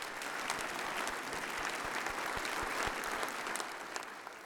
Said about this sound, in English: So give the mission committee a big round of applause, would you?